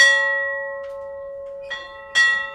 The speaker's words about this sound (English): winds up one more day on the shark bus, he rings the bell that announces the closing of the museum.